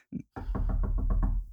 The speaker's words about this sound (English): Excuse me? Oh, it's someone's knocking on the window?